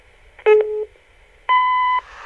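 Two steady electronic beeps of an answering machine: a lower half-second tone, a short pause, then a brighter, higher tone of similar length, both loud and clean with no voices.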